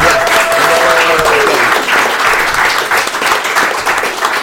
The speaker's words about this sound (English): All right. So also, it's a clapping for you guys. You guys showed up to this sort of thing. So let's hear it.